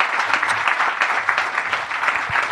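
Steady audience applause fills the whole stretch, a dense, even patter of many hands clapping at once with no voices rising above it.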